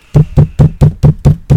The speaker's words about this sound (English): The peasants can pound on the door all they want.